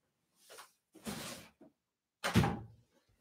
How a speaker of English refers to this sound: Of course, I gotta take, let me shut the door.